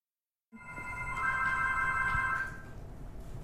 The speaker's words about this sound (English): Yes, I can hear the phone ring now. Which is exciting.